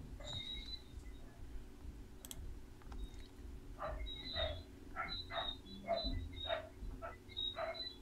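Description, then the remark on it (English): A dog barks repeatedly, about eight sharp yaps in a fairly steady rhythm during the second half, over a constant low hum with no one talking. “Oh gosh, my dog is going off.”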